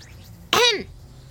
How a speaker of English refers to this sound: Nobody stirred. I coughed. Again.